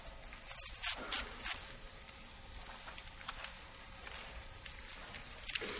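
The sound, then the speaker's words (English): A blank piece of paper being torn, a quiet crackling rip broken into several short bursts with brief pauses, then a final sharp tear near the end, with no voices. “And so you could just tear it, just like that. And then you could fold it over.”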